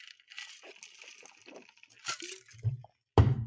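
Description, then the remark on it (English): Sounds of someone drinking water: soft liquid sloshing and slurps, a couple of low gulping thuds, then a sharper clunk at the end, with no talking. “Anyway, I'm going to have a little more water.”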